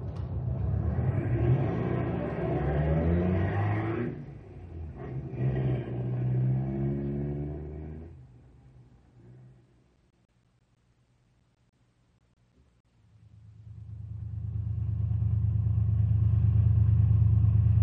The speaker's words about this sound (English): Sounds like they're out to warm up their cars, not burn them up.